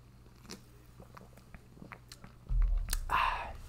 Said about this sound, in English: I'm going to grab a sip of my beverage. Bear with me, folks.